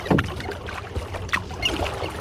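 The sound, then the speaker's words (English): Kayak paddle strokes dip into calm lake water, each a soft splash and swirl followed by light dripping, with a steady low wash of water between strokes and no voices. “for her surveys of water birds, one of the most important tools of her trade is a kayak.”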